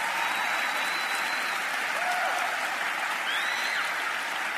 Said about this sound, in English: It's a nice way to start your day at work, isn't it? To a big round of applause. I don't think I've ever experienced that before, so thank you.